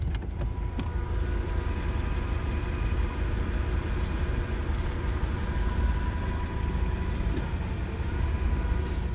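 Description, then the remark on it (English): A car engine idles in heavy traffic with a steady low rumble, heard from inside the vehicle, with faint tonal hums and a few small clicks near the start. No one speaks. “Dude, like, there is so much fucking traffic, bro.”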